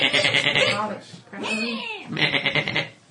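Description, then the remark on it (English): A human voice mimics a sheep's bleat in three wavering, nasal bursts, loud, with a short pause between the first and second and a gliding pitch in the middle one. “Is that what sheep to sound like? Yes, it's what sheep sounds like when they're resurrected mimics.”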